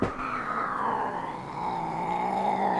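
A cat named Buzz, a tuxedo-patterned cat fitted with a body mic, growls in one long, unbroken rumble, fairly loud, holding a steady low tone for about three seconds with no voices around it.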